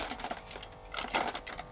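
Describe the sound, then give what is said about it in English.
Metal cutlery clatters and clinks as someone rummages through a kitchen drawer holding a vegetable peeler, a pizza slicer, teaspoons and a light bulb, a quick run of jangly knocks and scrapes with no talking. “Why is a light bulb in a kitchen drawer? These really need a good sort out.”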